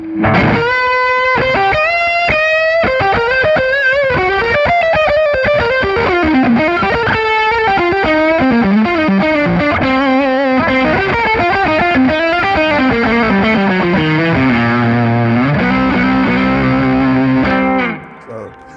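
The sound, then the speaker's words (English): A heavily distorted electric guitar, played with no effects pedals, plays a fast, loud solo alone, with sustained bends and rapid runs across the neck, ringing for nearly twenty seconds before cutting off abruptly. “So the other guitar player, like, OG, he looked over, he said, man, you ain't got distortion built off in that thing or something like that.”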